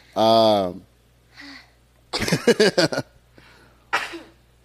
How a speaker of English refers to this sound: I have to sneeze. You have to sneeze? Corona.